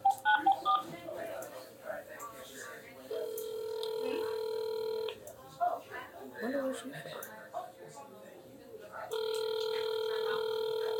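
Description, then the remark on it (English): Telephone keypad tones sound in two long, steady electronic beeps, each lasting about two seconds, with indistinct talking and clatter filling the gaps between them. “This is why we ask y'all to write, you know, legibly, because when it's time to dial, that's what happens.”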